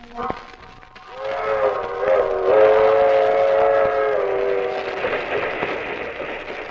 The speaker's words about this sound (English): That train is the Southeast Limited. See it? Long, sleek, and powerful. Ticking off the miles on a humming rail. A masterpiece of 20th century mechanical perfection.